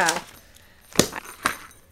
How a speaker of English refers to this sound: Before he leaves, his mom shares a surprise, waving a set of keys in the air.